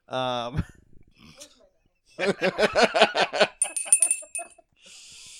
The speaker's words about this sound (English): Aw, it's like a little jingle bell.